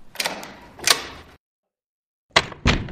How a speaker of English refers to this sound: Walk through that door and close it behind you.